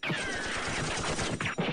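Dense, continuous battle noise: rapid overlapping rifle gunfire, magazine after magazine, and crashing grenade and rocket blasts fill the short stretch at a steady loud level, with no pause between shots.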